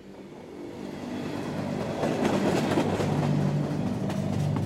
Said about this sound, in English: On a deathly cold December night in 1995, harsh winds rattled the walls of a train trundling through Millersburg, Oregon.